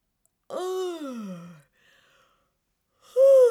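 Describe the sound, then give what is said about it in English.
A long, drawn-out yawn from a person stretching before singing, its voiced tone sliding downward for about a second, then a short quiet breath before another loud vocal yawn begins. “So let's start with a good stretch and yawn.”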